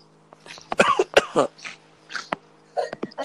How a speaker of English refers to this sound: You sound like you're crying, but now I hear coughing. Yeah, yeah. No, I have a pretty bad cold right now.